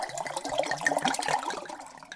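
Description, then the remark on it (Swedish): Liquor is poured out, splashing and gurgling steadily for a couple of seconds in a continuous pour with a bubbling, trickling texture and no voices. “Jag har slagit ut spriten.”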